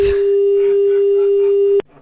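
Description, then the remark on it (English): A loud, steady telephone dial tone hums continuously for nearly two seconds after the other person hangs up on the call, then cuts off abruptly, leaving near silence. “how dare you put the phone down on madam?”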